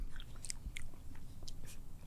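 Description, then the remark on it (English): Soft chewing on creamy ice cream with small crunchy pretzel pieces, a few brief crackly bites scattered through a couple of seconds, with no talking. “So my thoughts are, this is a natural habit of ice cream, but the pretzels aren't as crunchy as they are in the salad.”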